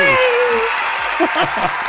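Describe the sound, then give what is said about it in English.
A crowd claps loudly and steadily for a couple of seconds, a dense wash of applause with excited cheers and whoops rising above it. “And as the crowds die down, welcome to the show”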